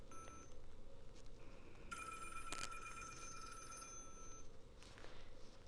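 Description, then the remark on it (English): A telephone rings on a boat at the beach with a bright, steady electronic trill lasting about three seconds, sounding over a constant low rumbling background noise, with a brief sharp burst partway through. “When Zachary saved the whole mankind, he celebrated at the beach on his boat with his friend until he gave him another mission, until they hear a call.”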